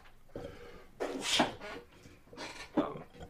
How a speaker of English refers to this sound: and I'm going to sneeze.